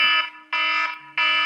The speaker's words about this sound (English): And that's the buzzer again. The clock keeps ticking.